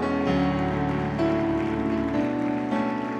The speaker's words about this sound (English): All right, before you're seated, can we give the worship team a big hand clap?